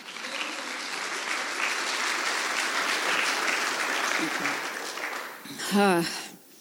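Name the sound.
audience hand clap applause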